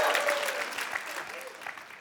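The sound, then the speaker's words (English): Warriors fans in a church audience cheer and applaud when called on, a dense, steady wash of clapping with whoops and shouts rising over it, holding loud for the full couple of seconds. “Any Warrior fans? Let me hear it, Warrior fans.”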